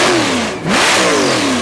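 A car engine revs loudly, its pitch sweeping down, dropping briefly, then climbing and surging again in a second throaty rev, with no talking.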